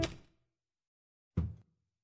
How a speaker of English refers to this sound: And that's when I heard the footsteps ascending the staircase.